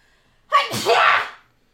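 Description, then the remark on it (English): A single loud sneeze bursts out after a brief quiet intake, a sharp onset followed by a breathy, hissing release that fades within a second. “Yeah, I really have to sneeze.”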